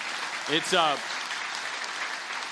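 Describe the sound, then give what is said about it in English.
An audience claps for America, a dense wash of applause running the whole length, with a brief voice calling out over it near the start. “Yeah, you can clap for America.”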